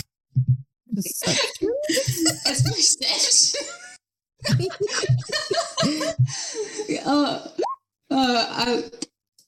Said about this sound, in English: Oh my! You're sniffing so hard.